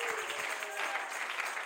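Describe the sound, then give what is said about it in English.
A church audience claps together in a dense, steady wash of many hands, sustained and fairly loud throughout, with a faint voice briefly audible beneath the applause. “Clap your hands to the Lord together.”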